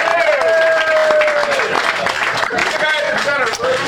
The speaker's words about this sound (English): Round of applause for all of it. Yes, 44.